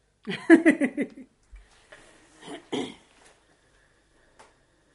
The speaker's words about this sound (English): She was just clearing her throat.